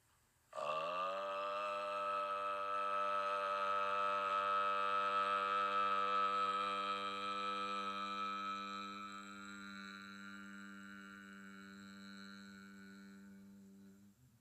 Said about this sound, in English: The first sound is ah, as in odd. The second sound is o, as in o. And the third sound is mm. And there is actually a fourth sound, which is silence. Listen for a moment to a Tibetan monk recite Om.